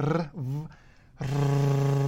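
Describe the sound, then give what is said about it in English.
A voice rolls an R while saying a V, a voiced alveolar trill with labiodental co-articulation: a buzzing trill with lips against teeth, a rough, rumbling vibration. A short wavering burst, a brief breathy pause, then a longer steady low drone. “Voiced alveolar trill with labiodental co-articulation. Sounds like an old car.”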